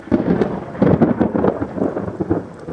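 A thunderstorm with heavy rain: a dense, steady hiss of downpour over deep rolling rumbles of thunder that swell and fade, fairly loud, with no voices.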